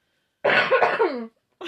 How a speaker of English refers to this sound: No! We were trying to get through this episode without me coughing. And it didn't work. It's too late now. Anyways, my voice has been dying all week, so sorry if you hear me aggressively dying.